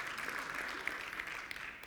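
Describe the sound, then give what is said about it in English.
An audience applauds for the Lord in a steady, dense wash of many hands clapping, fairly soft and even for the whole two seconds with no one speaking over it. “Yeah, you guys, you can give the Lord a great round of applause.”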